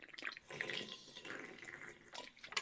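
Wet, slurping sips of an Arizona drink taken right at the microphone, a few gulps and liquid splashes in quick succession with no talking, the sounds bright, fizzy and moderately loud.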